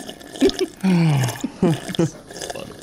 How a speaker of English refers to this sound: Okay, how about you just chug the water? I want you to cut it off. Are you blowing bubbles?